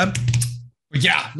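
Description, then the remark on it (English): Loud clattering and scraping of a crooked camera being adjusted by hand, in two bursts of plasticky clicks and rubbing separated by a brief silence. “Sorry for fiddling with my camera again. It's crooked and my autism can't handle that.”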